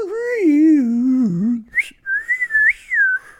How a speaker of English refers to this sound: he had to battle with a woodwind of some sort. He had a slide whistle.